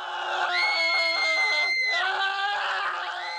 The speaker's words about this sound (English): … has been caught eating plant food with …. The three of them scream for some time.